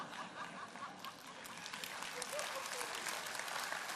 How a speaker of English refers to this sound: I'll just assume you're clapping for me.